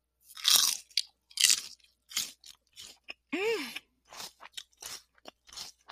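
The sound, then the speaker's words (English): Loud crunching of a crisp, sweet snack from a small bag being chewed, a run of sharp bites and grinding chews in an uneven rhythm, with a brief murmured hum partway through and no talking. “But they are so crunchy. Like, listen to this.”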